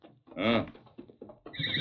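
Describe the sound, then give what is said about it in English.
A horse gives one loud, quavering whinny, followed by a few fainter snorts and rustling sounds. “Did you hear that horse, Kimo?”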